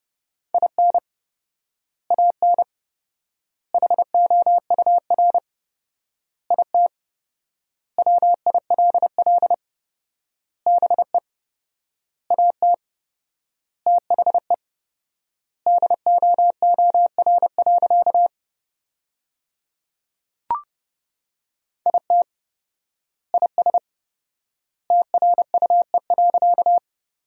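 Morse code sent at 30 words per minute with 4x word spacing, sending sentences made from the top 400 words: a single steady mid-pitched tone keyed in rapid dots and dashes, grouped into words with long silent gaps between them, no voices.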